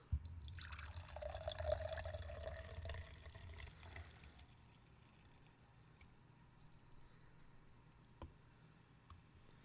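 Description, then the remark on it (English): Hard pear cider pours into a glass for an Angry Balls cocktail for about three seconds, its gurgling tone rising as the glass fills, then fades to a soft fizzing hiss with an occasional faint drip or click. “First, you get yourself some hard apple cider.”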